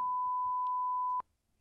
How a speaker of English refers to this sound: Yeah, can you beep it one more time? Yeah, let's beep it one more time.